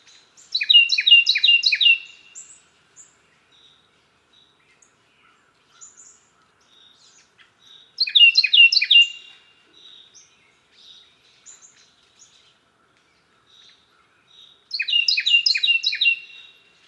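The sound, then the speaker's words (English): A Carolina wren sings three loud, rolling phrases of rapidly repeated notes, each burst about two seconds long with quiet gaps of several seconds between, heard clearly with no talking. “Let's listen to a Carolina wren in northeastern America, and then let's listen to a wren in southeastern North America so that you can hear the difference in the sound.”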